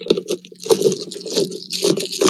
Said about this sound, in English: Were you jerking off with dice? No, I was stuffing something into a plastic trash bag.